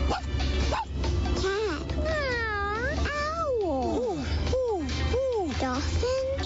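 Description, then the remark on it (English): A voice imitates a tiny dog with a quick run of high-pitched, whiny yips, each rising and falling in pitch. The yips are fairly loud over a low steady hum. “What about the tiny dog?”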